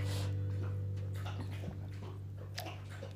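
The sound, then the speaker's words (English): Nico, a dog, laps water in quick, irregular wet licks and splashes over a steady low electrical hum, with no one speaking. “Sorry, Nico's getting water.”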